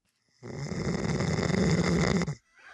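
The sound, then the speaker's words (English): A single long, loud snore from a person asleep in a studio rumbles for about two seconds, a harsh rattling inhale with no talking, then cuts off into near silence. “Apparently, I snore really loud.”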